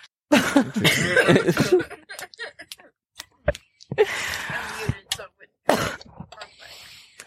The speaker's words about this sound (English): I'll cough on the mic.